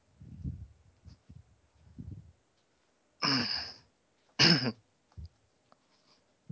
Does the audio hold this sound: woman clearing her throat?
yes